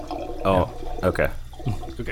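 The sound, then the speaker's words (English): Gurgling, glugging pouring sounds, apparently imitated by a voice, come in three short bursts over a steady background hiss, fairly loud, like kerosene being poured from a heavy canister into the tank of a machine. “there's a canister of kerosene over there, if you wouldn't mind pouring that into the tank of the story machine so we can fire it up.”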